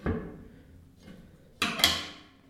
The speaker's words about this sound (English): As you could probably tell, the door has no artificial resistance, so if you let it go like I did, it will slam closed.